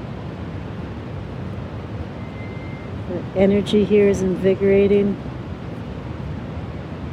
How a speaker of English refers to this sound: Good morning, good day, coming to you from the roaring shores of Lake Huron, the traditional lands of the Anishinaabe and Métis people. The wind's roaring, the water's roaring.